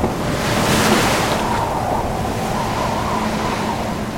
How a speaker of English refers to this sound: 50-foot waves envelop the captain. The ship trembles and groans.